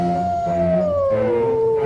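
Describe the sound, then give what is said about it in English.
A long, sustained howl with a steady tone that slowly glides downward, loud, heard through the stalks of a corn maze on Halloween, over a low rumbling background with no talking. “Through the stalks we hear a howl.”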